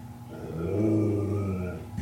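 A dog named Woody lets out a low, continuous growl lasting about two seconds, steady, swelling slightly in the middle with a brief sharp sound at the very end.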